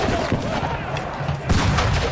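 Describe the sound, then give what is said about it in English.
A loud, dense din of battle as British forces bombard Māori fortifications with cannon and mortar: rapid gunfire crackling continuously with heavier cannon booms bursting through, including a strong blast about a second and a half in. “The British bombard these pā with cannon and mortar and then advance en masse, only to be gunned down in huge numbers by Māori warriors who'd been sheltering underground.”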